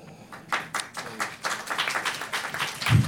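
An audience claps together in a steady burst of applause, a dense patter of overlapping hand claps that grows slightly louder toward the end.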